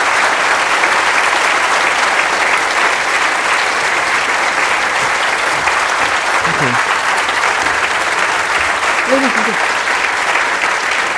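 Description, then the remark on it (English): Loud, sustained applause from an audience for a speaker after remarks on animal welfare at a book event, a dense steady roar of clapping with a few faint voices rising briefly beneath it. “I don't want to pause your applause because I'll ask you for some in a minute”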